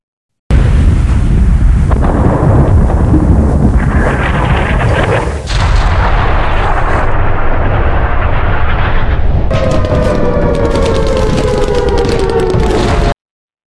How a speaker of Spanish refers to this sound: La situación sin solución acá en el Palacio de Justicia. Se escuchaba el tableteo de las ametralladoras y las explosiones de bombas y granadas. Esta noche, los combates continúan.